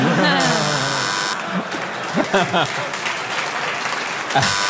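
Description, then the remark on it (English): Several game show buzzers sound at once as panelists buzz in on a question about the Apollo 11 computers failing before the moon landing, a jumble of overlapping electronic tones at the start, with another brief buzz near the end. Applause and crowd noise run underneath throughout. “I think we all buzzed in on the computers on the moon landing went awry just before they landed.”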